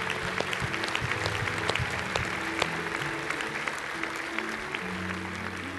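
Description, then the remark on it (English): An audience at a church service claps steadily together as a clap offering of praise to God, a dense, sustained wash of many hands at a fairly even loudness, with scattered sharper claps standing out and faint musical tones underneath. “Can we just give him a clap offering of praise for his goodness?”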